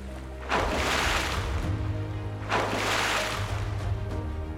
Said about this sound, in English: Whale swims back towards the shore.